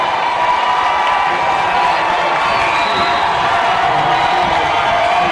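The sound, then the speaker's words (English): A large indoor crowd at a basketball game roars steadily for several seconds, a loud, dense wash of cheering and shouting with scattered whoops and no pauses, as Laverne's fans cheer with their team leading 46-39 late in the game. “This Laverne crowd getting loud.”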